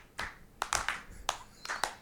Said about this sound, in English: And then there's this is the arrhythmic clapping here, where it just gets all uncoordinated.